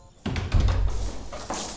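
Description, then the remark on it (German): The front door of a villa being opened after the doorbell rang, in a TKKG audio drama: a sudden low thunk followed by a second or so of rumbling, rattling handling noise, moderately loud, with no voices. “Herr Glockner hatte kaum an der Haustür der Villa geklingelt, als Dr. Prunk die Tür auch schon öffnete.”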